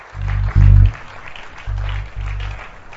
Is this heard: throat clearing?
no